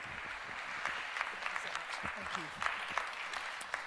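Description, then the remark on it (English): A crowd applauds steadily for several seconds, welcoming a preacher as he comes up to preach, a dense wash of clapping with sharper individual claps popping through, plus some faint voices murmuring underneath. “So can you just give him a really warm welcome, round of applause as he comes up to preach.”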